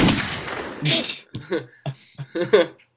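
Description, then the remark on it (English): A single sharp gunshot effect bursts out at the start and rings away over the first second, followed by a few short, choppy vocal-sounding bursts. “So one gunshot for the boy.”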